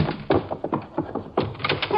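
Someone tries to force open a locked and bolted door: a quick, irregular series of solid thumps and rattles, pausing briefly before another burst of jolts.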